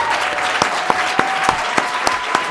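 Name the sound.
audience applause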